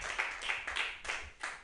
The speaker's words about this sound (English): Clap for him.